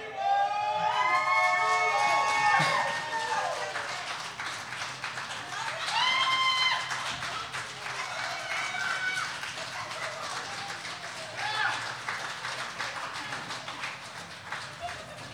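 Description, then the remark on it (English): A crowd claps steadily and loudly throughout, with high-pitched whoops and cheers rising over the applause in bursts, strongest at the start and again midway. “Just keep that shit going. Clap some more.”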